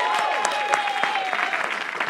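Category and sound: crowd, audience hand clapping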